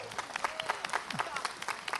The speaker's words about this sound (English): You know, I'm in this treatment now for my hepatitis C, and I'm 22 weeks down, 2 weeks to go. So let's cheer, okay? 2 weeks to go.